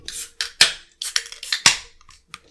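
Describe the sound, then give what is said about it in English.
Several energy drink cans are cracked open one after another, each a sharp metallic snap with a brief hiss, the loudest pops standing out among quieter clicks. No voices are heard. “Yeah, let's crack. Let's go.”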